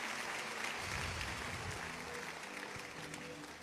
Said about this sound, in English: Give Jesus a mighty clap offering. Dele una ofrenda de palmas a Jesús.